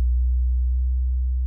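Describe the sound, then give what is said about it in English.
A steady, loud low-pitched electrical hum drones throughout, its pitch deliberately varied by only 2 hertz up and down, with no other sounds present. “kind of subtle because I'm only varying it 2 hertz one way or the other.”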